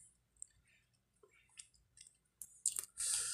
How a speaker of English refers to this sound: Boy, you was crunching that ice.